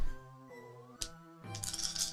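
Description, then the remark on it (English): Three damage dice tumble across a tabletop for a total of 8: one sharp click, then a short burst of bright clattering and rattling, fairly loud over a soft, steady musical tone. “Three damage dice. 8. For a total of 8.”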